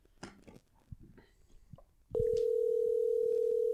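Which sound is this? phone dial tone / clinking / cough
phone dial tone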